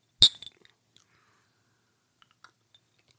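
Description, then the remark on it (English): A single bright clink of one small ice cube against a glass of Wyoming whiskey rings out, followed by a few faint ticks and small mouth sounds of a quiet sip, with no talking. “So now we've got this Wyoming whiskey with one little ice cube in it.”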